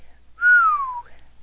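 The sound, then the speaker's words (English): A single low human whistle, clear, sliding steadily downward in pitch for about half a second before trailing off, with no talking around it. “let out a low whistle.”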